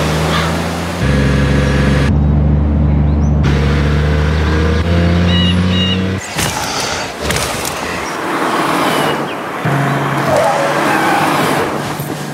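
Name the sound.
car driving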